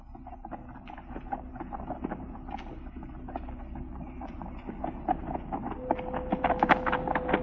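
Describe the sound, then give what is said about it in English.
Rapid, rhythmic hoofbeats of a galloping horse riding away from the Holcomb place clatter steadily without pause, growing louder and sharper toward the end over a low rumbling background. “Look at that horse riding away from our Holcomb's place, Bob.”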